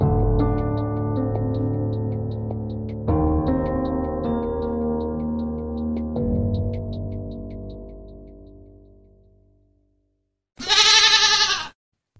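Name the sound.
goat bleating sound effect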